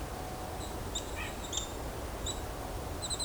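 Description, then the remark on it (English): Golden-crowned kinglet giving a series of very high, thin, short call notes, some in quick little clusters, fairly faint over a steady outdoor hiss and low rumble. “I'm hearing golden crown kinglet too.”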